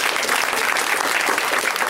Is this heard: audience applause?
yes